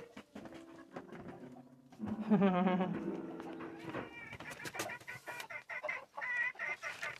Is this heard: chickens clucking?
yes